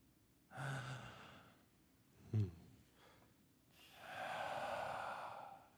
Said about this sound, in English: You hear breath return to Keeper's lungs. Unconscious in your arms, but breathing.